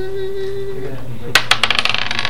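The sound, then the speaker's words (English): A six-sided die is rolled: after a quiet low hum, a burst of sharp clattering clicks comes fast, the bounces quickening and fading as it settles. No talking. “And I'd like you to roll a d6.”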